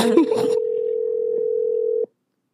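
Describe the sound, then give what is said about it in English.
A steady telephone dial tone hums for about two seconds, preceded by a brief cluster of dialing beeps and faint background noise, then cuts off abruptly. “I'm done calling y'all.”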